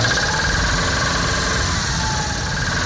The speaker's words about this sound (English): He's now spinning at the rate of an average 4-cylinder car engine would sound if it were moving at 65 miles an hour and one of its rods were thrown.